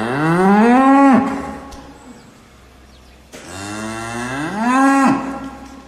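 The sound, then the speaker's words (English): A cow, separated from her calf and kept in a different pen, moos twice in long, drawn-out calls, each rising and then dropping sharply, with a short quiet gap between them. The lowing is loud, and no one speaks. “And she's in a different pen, and she just looked at us, and she mooed for a really long time.”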